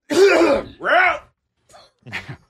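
throat clearing and cough

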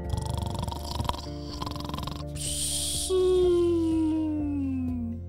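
loud snoring

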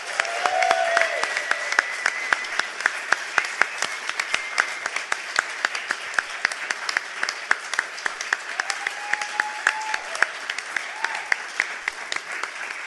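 audience applause

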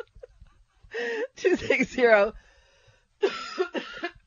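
cough

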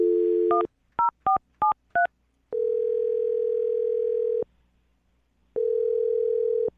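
telephone number being dialed

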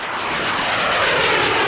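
jet aircraft flying overhead

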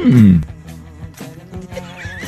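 horse neighing

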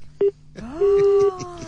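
telephone keypad dialing tones

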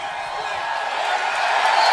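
arena crowd cheering

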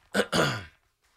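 blowing nose

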